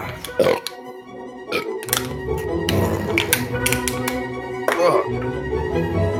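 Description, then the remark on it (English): Someone chugs a shot during a toast in a series of quick, throaty gulps, with sharp taps and a few grunting, snorting noises mixed in over a steady background. “How many did you just chug?”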